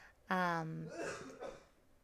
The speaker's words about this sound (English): My husband's doing his nightly coughing in the middle of his sleep. That's delightful.